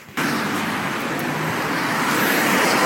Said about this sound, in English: It's quite busy. I think there's lots of cars on the roads.